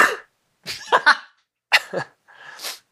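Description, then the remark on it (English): Several sharp sneezes in quick succession, each a breathy burst of noise, the last preceded by a drawn-in vocal build-up before the release. “I feel much better. I thought you hate sneezes.”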